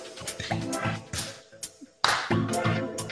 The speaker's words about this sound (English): All right, everybody, clap your hands.